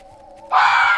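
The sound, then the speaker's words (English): A fox's mating call: a faint, steady tone gives way halfway through to a sudden loud, harsh, rasping scream that holds to the end, with no voices. “It's just foxes. That's their mating call.”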